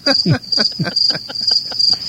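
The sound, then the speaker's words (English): Crickets chirp in a steady, high-pitched trill that pulses rapidly and continuously, fairly loud, with faint low murmuring sounds underneath. “Wake up, crickets, you happy bastards.”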